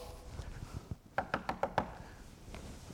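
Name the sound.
knocking on a door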